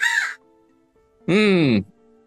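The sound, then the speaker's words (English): Two loud caws from a human voice imitating a summoned raven, Hugin: a short harsh one followed by a longer, drawn-out rasping call after a brief pause. “Do you know anyone that speaks bird?”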